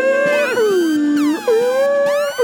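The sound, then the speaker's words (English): A voice mimics the Kill Bill siren sting: a loud, sustained wail that slides down in pitch and swoops back up, repeating in about two waves with no speech. “You hear the fucking Kill Bill sirens like.”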